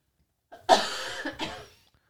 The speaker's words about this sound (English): I'm sorry, I didn't know you were going to be coughing.